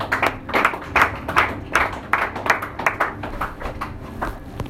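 An audience claps for Jesus together in a steady, even rhythm, roughly two claps per second, with sharp bright slaps that fade slightly toward the end. No one speaks over it.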